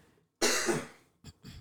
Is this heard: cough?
yes